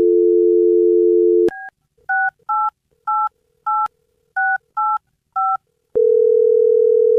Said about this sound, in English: Well, we'll dial her phone up right now, see if we can get her on the phone and find out what happened. Here we go.